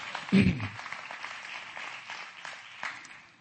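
An audience at a church service applauds, giving the Lord a hand clap of praise, many hands clapping in a dense, steady patter that fades slightly toward the end, with a brief low thump near the start.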